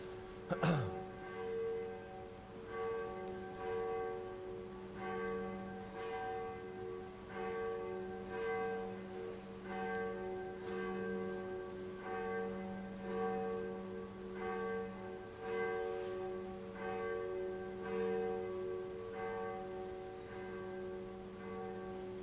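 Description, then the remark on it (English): A bell rings steadily during a church worship service, struck again every second or two, its rich overlapping tones humming and sustaining between strokes for over twenty seconds, with no one talking. “Okay, now that we've got that and the bell, so there we go.”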